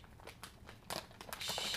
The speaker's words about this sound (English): I should have moved this bag of Doritos before we started recording, because now I want to move it, but it's going to make so much crunch. Well, don't move it. Well, I'm just going to, like, lightly.